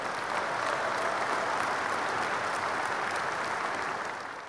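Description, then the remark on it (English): A crowd claps steadily in sustained applause for VFX artists, dense and even throughout, tapering slightly at the very end with no voices standing out. “So let's give a round of applause to all of the VFX artists out there.”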